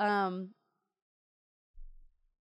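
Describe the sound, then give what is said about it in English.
A short, loud, throaty burp right at the start, followed by silence and then a faint low rumble near the end. No one speaks. “Sorry, burp there.”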